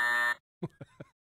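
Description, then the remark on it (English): A loud, harsh buzzer blares once for about a third of a second and cuts off sharply, followed by a few short bursts of people talking. “The first time I missed it up, the buzzer was late.”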